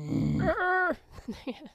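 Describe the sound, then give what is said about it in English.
A person lets out a low, rough growl that shifts into a sustained, throaty voiced tone, followed by a few quieter vocal grunts. “Sorry, I just started to join you on the growling.”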